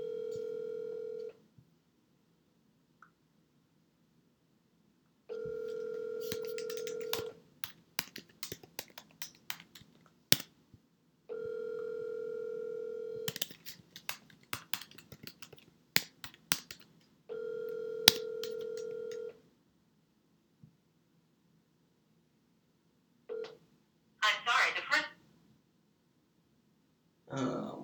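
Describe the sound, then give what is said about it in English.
A phone line rings out through the earpiece, four steady buzzing ring tones spaced a few seconds apart, with faint clicks and handling noises in the pauses and no one answering. “Gonna have to call some.”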